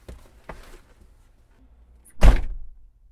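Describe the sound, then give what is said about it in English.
A single heavy car door slams shut as someone gets out of the car, a loud low thud with a brief rattle, preceded by faint shuffling and movement noises. “I'm gonna get out of the car, because I'm sorry.”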